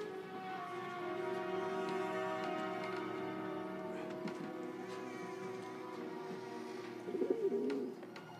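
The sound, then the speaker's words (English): Pigeons coo in a low, throaty, continuous murmur that runs the whole way through, swelling briefly louder near the end, with no voices present. “They turn you into a pigeon? They turn you into two pigeons.”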